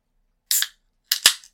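A beer cap pops open on a Cold Smoke beer from Kettle House Brewing Company in Bonner, Montana: a brief hissing burst, then a second, sharper pop with a quick fizzy rush of gas, fairly loud with no talking.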